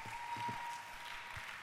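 An audience claps their hands together in a dense, steady wash of applause, many hands overlapping into a continuous crackling patter at moderate loudness.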